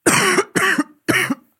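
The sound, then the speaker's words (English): A short coughing fit: three loud, harsh coughs in quick succession, with brief pauses between them and no talking. “Cough it up. Cough it up. Cough it all up.”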